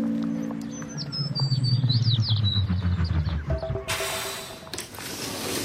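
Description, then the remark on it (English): In an imagined future soundscape without internal combustion engines, birds in the trees chirp and twitter in quick, high bursts over a low rumbling hum for a few seconds, then a broad hissing wash takes over and the chirping fades away. “So when internal combustion engines are gone, we start to hear things like birds in the trees and the church bell in the distance.”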